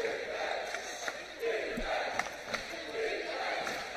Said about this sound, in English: Crowd has come alive here at the Convocation Center